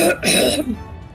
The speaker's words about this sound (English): He is going to just kind of clear his throat and go, Loxodon.